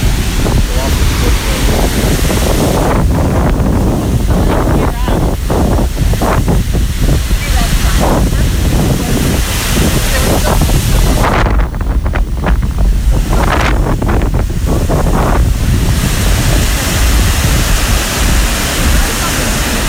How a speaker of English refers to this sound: There's a wall of water splashes up.